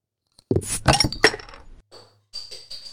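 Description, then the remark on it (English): Beer glasses clink together several times in quick succession, bright, as in a toast with a dark, aged Firestone Walker beer. A few softer ringing taps follow. No one speaks. “Cheers. Cheers, friends.”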